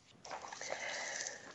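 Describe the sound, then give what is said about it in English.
A Frenchman munches a festive cake: soft, moist munching with wet chewing and faint crumbly crunches running steadily for under two seconds, fairly quiet and with no talking over it. “Frenchman munches a festive cake.”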